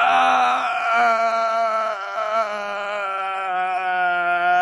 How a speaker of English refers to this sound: Clark Kent screams a bit.